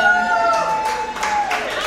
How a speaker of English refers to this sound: These fuckers will cheer for anything.